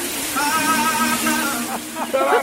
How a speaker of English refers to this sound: I mean, imagine if he's in the shower every morning and you had to listen to this.